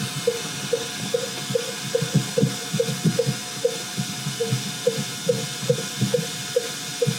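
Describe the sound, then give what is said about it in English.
Fin whale calls, sped up: a steady, metronome-like train of short, low pulses repeating about twice a second over a hissy, rumbling background, with no voices. “So the last piece of this I'll show you is just those fin whale 20 hertz calls, these are very low frequency. This is sped up 24 times.”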